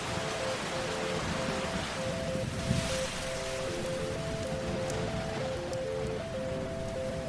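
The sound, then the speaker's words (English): Steady, dense rain hisses continuously throughout, loud, with a faint sustained droning tone shifting pitch underneath; the rain begins about five minutes after a rain ceremony of the Kara tribe ends. “And you can see that how the rain is coming now after they stop everything.”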